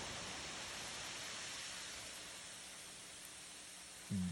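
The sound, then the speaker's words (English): Steady, even hiss of rain pouring down outdoors, continuous and fairly soft throughout, with no voices and a brief low bump right at the end. “Here's a clip from my dad.”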